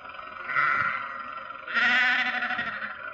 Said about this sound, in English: Confound that man with his sheep. Does he have to take up the entire road?